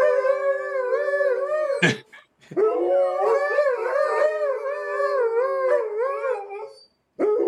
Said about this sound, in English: My dogs howl like that too. Yeah. So Malamutes don't really bark, but they fucking howl.